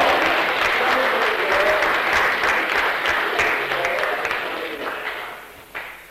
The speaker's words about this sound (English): Praise God. Give him a clap. That's it.